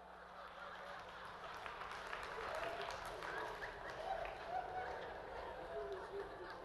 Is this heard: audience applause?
yes